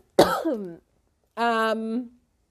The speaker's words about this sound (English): I got a cough, excuse me.